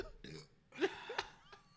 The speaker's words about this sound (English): Look, guys, I have years of damage to my esophagus. I can only burp now.